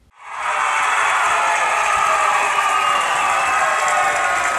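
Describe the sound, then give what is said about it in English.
A dense wash of applause rises quickly after a brief moment of silence, then holds at a steady, loud level throughout, with many hands clapping together and no voices. “Yes, yes, we got the clapping.”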